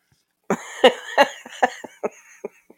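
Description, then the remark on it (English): A fit of harsh coughing from a seated person: about eight sharp bursts in quick succession, loudest at the start and gradually tapering off, with no talking. “I'm sitting there fucking coughing.”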